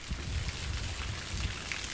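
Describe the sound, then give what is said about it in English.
Rainwater from heavy rain gushes steadily from a gutter outside the WBUR studio on Comm Ave in Boston, a continuous splashing pour with a low rumbling churn, fairly loud, with no voices. “That is water pouring from one of the gutters outside our WBUR studio on Comm Ave.”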